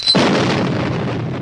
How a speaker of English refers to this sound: He's knocked unconscious all of a sudden from an explosion.